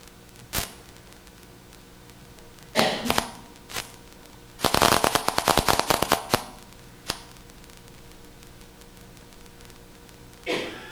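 Sharp, crackling clicks of a single brain cell, a place cell, firing as it is recorded in an arena, scattered irregularly over a faint steady hiss, with a dense rapid burst of clicks in the middle before sparse isolated ones return.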